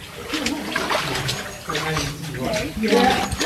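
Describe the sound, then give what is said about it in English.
Heavy sloshing and churning water, steady and continuous as a person steps sideways through deep water in a dark tunnel, with speech-like voices mixed in over the splashing. “Okay, stepping sideways through the tunnel. Water's quite deep.”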